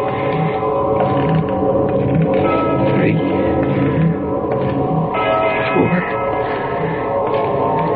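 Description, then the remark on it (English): Far off in the distance, a deep church bell strikes the hour repeatedly, each resonant bong ringing on and overlapping the next in a steady, humming wash of tone at moderate loudness. “And then way off in the distance, I heard the deep-throated bongs of a church bell striking the hour.”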